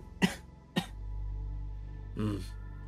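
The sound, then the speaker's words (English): Three harsh coughs: two sharp ones in quick succession, a pause, then a longer, rougher cough, over a low steady hum. “That cough. I can tell you must be a miner, clearly.”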